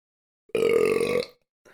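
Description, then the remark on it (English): A single loud burp, drawn out for most of a second with a low, rumbling buzz, followed by quiet and a faint short breath-like noise. “No, I just had to burp.”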